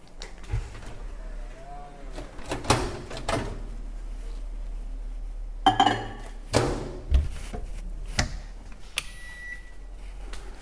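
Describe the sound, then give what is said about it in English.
A microwave door clicks open, followed by a ceramic bowl of butter and chocolate set down inside to melt, with a light clatter and a few thumps and handling noises, distinct. “So I'm just gonna put this in the microwave here.”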